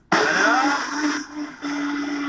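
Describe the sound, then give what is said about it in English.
A powerful blender kicks on abruptly and runs loud, a steady motor whine over a rough, churning roar as it blends white rice, soaked in water for 2 hours, with water, with no voices. “Into a powerful blender along with water.”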